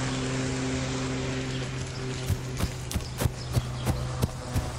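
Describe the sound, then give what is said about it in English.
A lawnmower engine runs with a steady, rough drone and low hum; partway through, a quick series of sharp, evenly spaced knocks rattles over the motor noise. “Oh, the lawnmower.”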